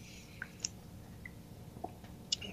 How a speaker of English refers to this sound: Got a tickle in my throat, guys. I hate doing this on live radio, but I'm going to have to take a sip of beverage here.